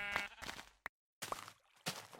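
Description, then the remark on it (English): A sheep bleats in a few wavering, nasal calls separated by short pauses, with a brief click between them and no voices. “We just haven't seen a pink sheep in a great deal of time, and it's starting to wear on me.”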